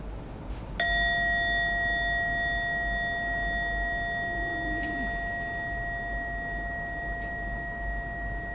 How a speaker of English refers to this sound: We're going to begin with a bell tone. That'll mark the beginning of the 5-minute meditation. And all I ask you to do after you hear the bell is bring your attention to the breath.